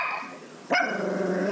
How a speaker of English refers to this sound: Snuggles, the little dog Snuggles.